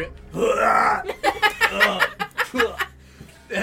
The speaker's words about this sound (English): I burp.